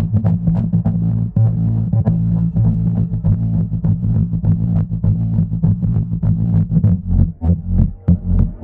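A steady, pumping low-frequency throb in video game music repeats in a heartbeat-like rhythm, evoking a creature that infects a host, with dense, distorted bass pulses and sharp transient hits layered over a continuous droning hum, loud throughout.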